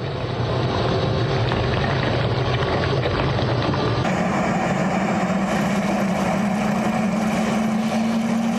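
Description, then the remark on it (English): A grinding machine churns meat with a steady, wet sloshing roar, loud and unbroken throughout, its low motor drone stepping up in pitch about halfway through. No voices. “Listen to the noise they add of the meat sloshing.”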